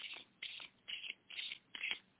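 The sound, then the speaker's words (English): Oracle cards being shuffled for a card reading in a steady rhythm of short, papery rustling bursts, about five in a row, soft with no voices. “And again, let me know when to stop shuffling.”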